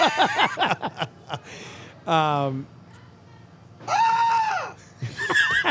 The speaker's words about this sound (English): by the way, there aren't children being tortured here. They're bowling. They're all having a wonderful time. Oh, you've heard probably screams in the background as we're talking about.